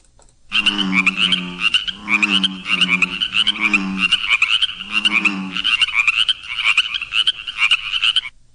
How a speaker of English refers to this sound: What do you think that was? I bet you know what that was. That was bullfrogs and chorus frogs. It wasn't Fred the Frog. He's still asleep today, but it was bullfrogs and chorus frogs.